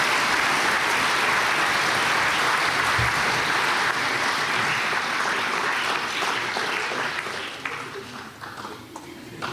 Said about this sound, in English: Come on up and get your prize. And keep that round of applause going, people.